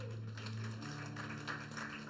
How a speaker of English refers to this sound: This guy is in the spirit. Let's clap for him.